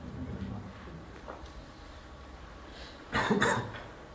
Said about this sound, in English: I've got a cough now.